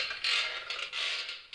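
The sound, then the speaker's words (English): A wooden rocking chair at the window of a room in the Hotel Monte Vista creaks in slow, repeated groans as it rocks back and forth on its own, fairly steady, with no voices present. “The next morning, it's back at the window, and it should be mentioned that while they're hard at work cleaning, the rocking chair moves on its own by itself almost the entire time.”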